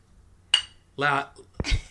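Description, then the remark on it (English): A single bright clink of glasses of Pliny the Elder beer tapped together in a toast, short and ringing, followed by a brief voice and a burst of clattering noise. “And we're, here, listen to this clink right here.”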